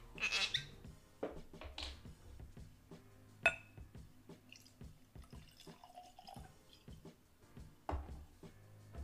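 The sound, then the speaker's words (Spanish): Oban Bay Reserve Night's Watch whisky and water pour and drip into glasses, with small clinks and trickling splashes in short bursts, plus a sharp tap of glass partway through; no one speaks. “Le voy a quitar un poquito a la que le voy a poner agua porque también siento que es un desperdicio un buen whisky.”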